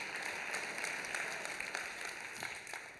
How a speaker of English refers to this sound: And some of you at home spilt your coffee right there trying to clap with us.